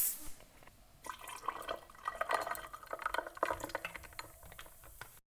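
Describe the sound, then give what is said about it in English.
Liquid pours steadily for several seconds with bright clinks and crackles mixed in, like a drink splashing over ice in a glass, fairly quiet, with no talking. “Ice? Yes, I don't mind if I do.”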